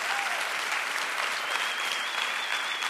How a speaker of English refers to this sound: Last Easter, we had 8,665 people here. We can cheer that on. Come on.